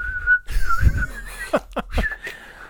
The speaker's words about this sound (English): I lost the whistle. It went away.